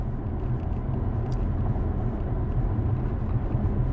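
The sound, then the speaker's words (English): A Dodge Challenger cruising at 70 on the highway, heard from inside, with a steady low engine and road rumble droning throughout and no breaks. “Bro, I'm about to shift this bitch into fucking sport mode. Really fucking break this car in. That's probably not a good idea. We're doing 70.”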